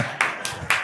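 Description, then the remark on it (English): One person in a church audience claps three times at an even, steady pace, each sharp clap ringing briefly, with no voices over it. “Did somebody clap?”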